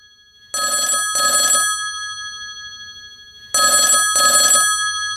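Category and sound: signal or alarm, telephone ringing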